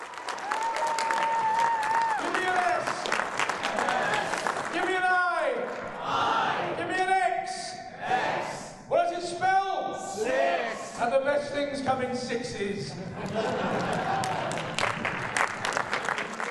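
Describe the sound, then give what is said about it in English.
A large convention audience claps steadily as actor Colin Baker walks on stage for his panel, while shouts and whoops rise over the applause, with bursts of loud cheering that swell and fade across the whole stretch. “When he walked on stage the first time, he charged up the audience.”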